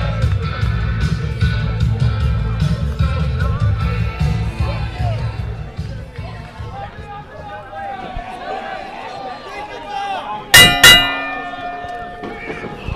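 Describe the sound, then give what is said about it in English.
A bell is struck once, loud, its clang ringing on and slowly fading. A crowd murmurs and people talk in the background beforehand. “Bell rung by yours truly”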